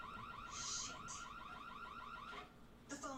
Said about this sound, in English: Oh, the guy hit the panic? Oh, he hit the alarm on the house. Oh, okay.